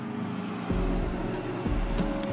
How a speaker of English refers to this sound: Oh, look, a car.